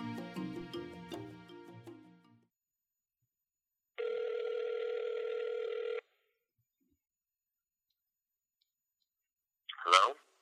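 A quick series of phone dialing tones is followed by a steady two-second ring tone, then silence before a short burst as the line picks up.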